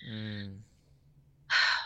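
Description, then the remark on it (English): A deep, audible breath: a short voiced hum or sigh, a brief pause, then a loud, airy rush of breath. “And I'm breathing, because it's our special need.”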